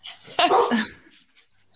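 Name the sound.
dog barking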